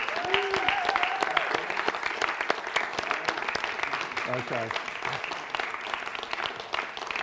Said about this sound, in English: I know we've already given the fathers chocolate bars and the men here, but I'd just like the fathers in here just to stand up. If you're a father, just stand up. Is that okay? And the rest of us, I'd like to just give them a good clap. Is that okay?